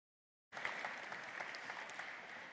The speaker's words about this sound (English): A round of applause, I think, for all the women.